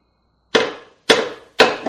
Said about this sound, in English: Hold that with the vice grips, then use the hammer to drive it in there a little further.